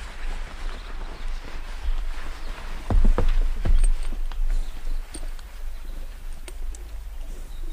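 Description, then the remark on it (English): Horses' hooves clip-clop at an uneven walking pace as riders dismount and lead them to a river in the wilderness, a cluster of hollow thuds in the middle, set against a steady outdoor hiss with occasional faint bird calls. “Dismount and bring your horses to the river.”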